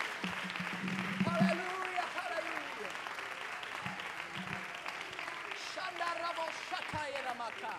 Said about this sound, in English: Would somebody lift up a hand clap unto the Lord this morning?